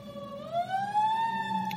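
A fire engine siren wails, its tone sweeping steadily upward and holding high, with a low engine rumble underneath and no talking.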